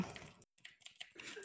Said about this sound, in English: typing is not exciting audio content.